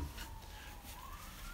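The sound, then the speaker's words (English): A faint emergency siren wails outside in Los Angeles, a thin steady tone slowly climbing in pitch over low background rumble, with no one speaking. “But wait, oh, sirens! We live in Los Angeles. Lots of sirens and helicopters.”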